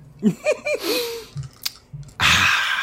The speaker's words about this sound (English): I'm drinking a big sip of water after that one.